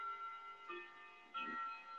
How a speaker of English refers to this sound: That's my clock.